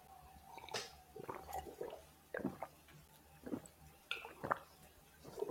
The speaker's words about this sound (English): At this point, I want everyone to pour and drink a glass of water. A whole glass? Mm-hmm. I just have a water bottle.